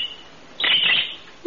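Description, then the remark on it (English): A new pet parakeet lets out a quick burst of high, rapid chirps lasting about half a second, bright and fairly loud, with quiet before and after. “I was just talking to our new parakeet.”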